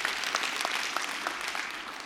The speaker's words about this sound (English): Give them a hand clap, because I appreciate what they do.